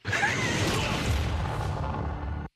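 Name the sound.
explosion sound effect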